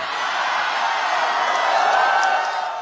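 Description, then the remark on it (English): A crowd at a rally for Prabowo Subianto cheers in a dense, steady roar of many voices that holds at an even, fairly loud level for about three seconds, with faint whoops rising from the mass. “Well, the crowd liked it.”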